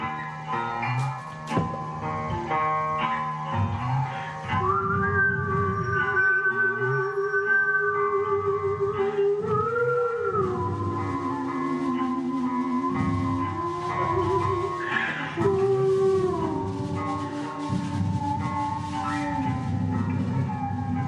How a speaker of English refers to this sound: Okay. Your house is not on fire. That's the sirens outside here at Kill Radio.